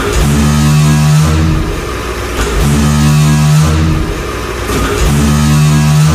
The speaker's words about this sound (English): For example, the latest one is a door that when being closed, I guess the hinges are just so like oily, not oily, but like rusty and old, that it sounds like the theme song from Jaws, like the opening.